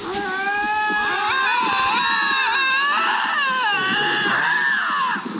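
Two lynxes calling to each other in overlapping, wavering yowls that rise and fall in pitch, loud and continuous with a harsh, cry-like quality.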